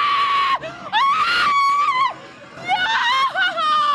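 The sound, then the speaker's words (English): A woman screams in fright, loud, in several drawn-out, wavering bursts with brief gasping breaks between them. “She's like overacting with it. I like a good scream, a good jump, and then then like a deep breath.”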